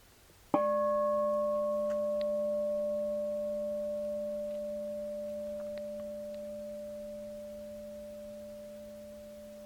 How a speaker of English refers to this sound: What I want to invite you to do is, actually eyes open is fine, is just to notice when I ring the bell, what is this experience that's going on with the ringing of the bell.